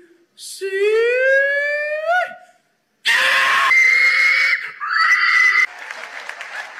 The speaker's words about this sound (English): So that's hog calling for you. That's a hog calling. That's impressive.